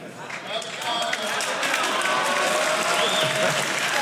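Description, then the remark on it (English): An audience bursts into applause as a poll on how to pronounce "favicon", swelling within the first half second and holding steady and loud throughout, a dense wash of clapping with scattered voices mixed in. “We'll do an applause.”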